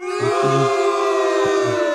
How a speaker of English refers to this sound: they're basically booing science. Yeah. Yep, cop that science. You've been told.